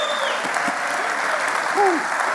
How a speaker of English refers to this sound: Give the Lord a hand clap for that.